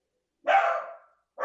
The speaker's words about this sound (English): Ooh, my dog barked on that one because he knows. He heard me, right? That's Finley. Finley! Oh, such an Irish name for a dog.